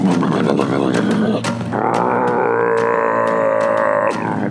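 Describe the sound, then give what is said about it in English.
A person vocally imitates a big man's deep, roaring fart: one loud, sustained rumbling blast lasting about four seconds, with the pitch shifting upward partway through. “Taking a fart. They were loud. Big man, big fart.”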